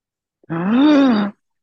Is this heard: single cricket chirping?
no